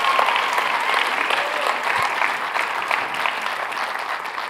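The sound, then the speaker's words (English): An audience breaks into loud, sustained applause for Jesus during a morning church service, a dense steady roar of clapping that holds at an even level throughout with no pause. “If you love Jesus, give Him the biggest round of applause you've given Him all morning.”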